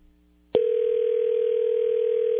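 After a brief low hum, a telephone dial tone starts abruptly and holds as one steady, unbroken tone, loud, with no voices, as a phone call is being placed.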